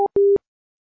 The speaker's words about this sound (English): Our phones are acting up. We got disconnected.